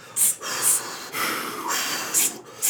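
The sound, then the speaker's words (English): Heavy, labored breathing, several loud, rough breaths in quick succession with sharp hissing inhales from someone in labor delivering a baby at a hospital. No talking. “Just keep breathing, babe. Just keep breathing.”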